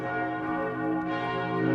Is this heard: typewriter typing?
no